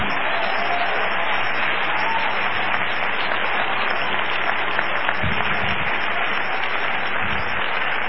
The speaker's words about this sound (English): Would you just clap your hands and love the Lord one more time?